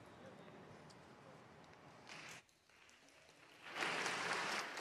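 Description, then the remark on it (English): A large audience at Redeemer Lincoln Square church claps together in steady, dense applause that briefly fades, then swells louder and fuller toward the end, with faint murmuring voices beneath. “We are a clapping church.”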